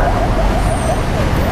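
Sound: road traffic noise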